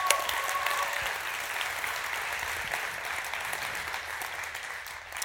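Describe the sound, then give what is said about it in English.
An audience applauds steadily, a dense wash of many hands clapping at an even loudness for several seconds, tapering only slightly at the end, with no one speaking over it. “So would you please give that whole team a round of applause for all that they're doing.”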